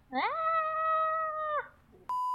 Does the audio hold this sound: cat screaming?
yes